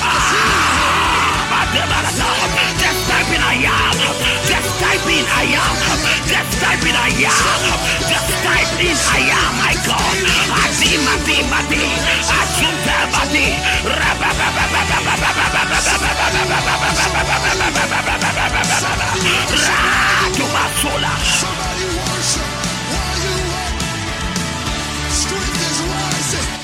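A large crowd shouts and yells together in a loud, sustained roar, dense and continuous throughout, with whoops rising over the din.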